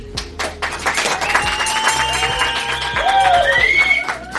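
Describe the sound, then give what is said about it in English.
A crowd applauds and cheers, with dense clapping and rising whistles over a steady roar that stays loud for a few seconds. “Zip it, rent a crowd, zip it.”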